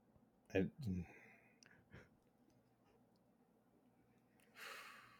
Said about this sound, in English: Excuse me. Sorry. Bless you.